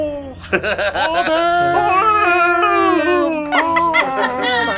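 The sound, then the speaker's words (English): A voice imitates a werewolf howl: a loud, drawn-out wavering cry that glides up and down in pitch, with choppier, laugh-like vocal bursts at the start and end. “Can you do it like a werewolf, like, ho!”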